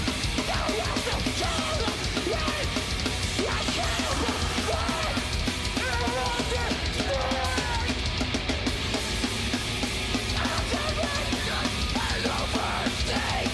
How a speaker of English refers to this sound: I just don't think his voice is appealing. Lyrically, I like... I give him like 2 years and his voice is going to be gone. Yeah. He's screaming with like his throat.